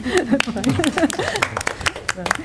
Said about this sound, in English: Really glad to have you. Yeah, you can applaud.